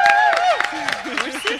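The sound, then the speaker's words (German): An audience at a live music performance claps and cheers after a warm-up act, with a quick burst of scattered clapping under high whoops and a rising whistle, plus overlapping shouting voices, all fairly loud throughout the short stretch. “Können wir mal einen fetten Applaus hören,”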